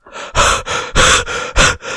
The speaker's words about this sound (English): all heavy breathing and not saying anything